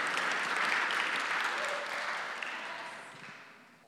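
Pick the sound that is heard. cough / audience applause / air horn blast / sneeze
audience applause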